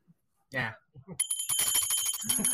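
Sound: bell ringing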